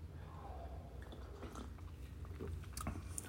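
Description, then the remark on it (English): A quiet sip of coffee: soft slurping and wet mouth noises with a few small clicks and a swallow, over a low steady hum, with no talking. “Pardon, sip of coffee.”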